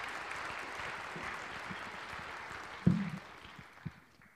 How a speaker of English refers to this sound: So give her some applause.